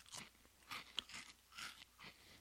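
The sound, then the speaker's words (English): Crisp crunching of cinnamon-dusted Chex snack mix being chewed, with several irregular bursts of brittle cracking and no talking. “It's like Cinnamon Toast Crunch on just a few Chex Mix things.”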